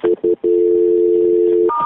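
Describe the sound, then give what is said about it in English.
Two short electronic phone tones, then a long steady tone that shifts to a higher pitch near the end, as a call is transferred to the city over a telephone line, with faint background noise. “I'm going to transfer you to the city because that's where the accident actually occurred, so hang on 1 second.”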